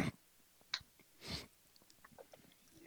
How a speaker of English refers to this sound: Let me clear my throat.